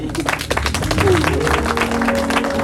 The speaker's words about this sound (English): Clap for her.